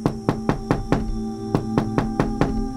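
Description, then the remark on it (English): A steady series of about ten firm knocks on a hard surface, evenly spaced with one brief pause midway, sharp against a faint constant hum. “That was a very specific knock. Very even, very assertive.”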